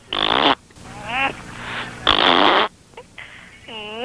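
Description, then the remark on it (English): A person blows loud raspberry fart sounds with their mouth, two long buzzy bursts separated by shorter voiced, wobbling vocal noises and a final rising vocal whine. “Hey, let's make a noise like a poot.”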